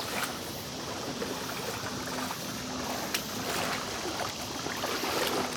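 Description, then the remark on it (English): Steady swishing and sloshing of really cold water as a person wearing waders wades through it, with a few brief splashes and drips over a constant watery hiss, no voices. “The waders hug you so tight when you get in. It's really cold water.”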